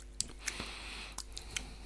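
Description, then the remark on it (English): A quiet sip of whisky: a brief wet slurp followed by several soft lip smacks and clicks of tasting, with no talking. “All right, well, how about we stop dipping our noses into the tannin and let's... Have a slurp.”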